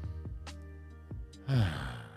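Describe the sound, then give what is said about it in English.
During a breathing exercise, a breath rushes in sharply and then eases out in a long, airy exhale, following a soft sustained tonal hum with no talking. “And if you just focus on your breath and breathe in like we might want to do now, everyone just breathe in. Breathe out.”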